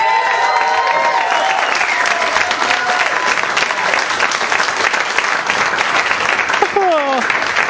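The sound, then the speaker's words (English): A crowd applauds and cheers steadily and loudly throughout, cheering what the Lord is doing in a man's life, with dense clapping joined by scattered cheers and whoops, and a few voices calling out over the sustained applause. “And so we're going to trust God, and we're going to listen from God's word, and we're going to cheer what the Lord's doing”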